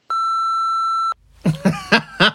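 A phone rings with an incoming call from the speaker's mum: one steady electronic tone held for about a second, then a quick run of short, bright warbling chirps, fairly loud with no one speaking.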